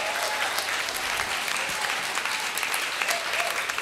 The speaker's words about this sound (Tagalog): Nako, yung gusto ko yung malakas sa palakpak na may kasamang sigaw na matindi at malupit.